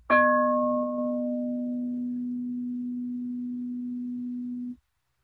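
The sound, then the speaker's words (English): A single meditation bell is struck once, its bright overtones quickly fading while a steady low hum rings on for several seconds before being cut off abruptly. No voices. “I presume most people found the bell it's a pleasant sound.”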